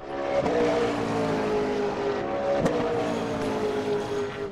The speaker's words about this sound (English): I mean, I think you played the sound effect of the EV car play again, didn't you?